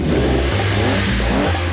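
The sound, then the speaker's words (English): The engine of a 1976 Lamborghini Countach sports car revs hard and loud, its deep throaty roar climbing and dropping in pitch as the throttle surges, with no voices. “1976 Lamborghini Countach. When you blow past them in traffic.”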